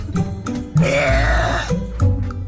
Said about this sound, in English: her burp measured at 107.3 decibels, which is about as loud as a motorcycle at full throttle, which is very impressive. Would you like to hear it? Yeah. I just needed to get the right mixture in my belly to produce this world record breaking burp.